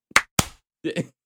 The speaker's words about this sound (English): Again, slow clap